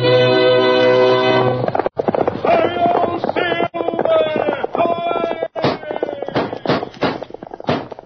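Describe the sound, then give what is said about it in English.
Galloping hoofbeats of Silver, the Lone Ranger's horse, in a Lone Ranger radio drama, mixed with loud orchestral music, opening with a sustained brassy chord, then sharp, hard clops and impacts pounding out more prominently toward the end. “Fiery horse of the speed of light, a cloud of dust, and a hearty hi-yo, Silver, the Lone Ranger.”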